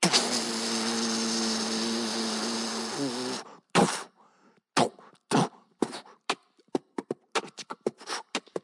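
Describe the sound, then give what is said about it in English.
Prison door locks engaging in a prison behind someone who has just stepped through the first door: a loud mechanical whir with a low droning hum lasts about three seconds, then stops abruptly and gives way to a rapid, irregular series of sharp metallic clunks and clicks. “Just all these locks, and then I heard this.”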